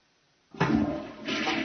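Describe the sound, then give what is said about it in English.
A toilet flushes with a sudden loud whoosh after a brief silence, a rushing swirl of water that dips slightly, then surges again as the bowl refills. “Toilet bowl bazooka.”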